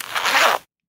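A single quick zipper pull, fairly loud, a raspy scratching swipe lasting about half a second before stopping abruptly into silence.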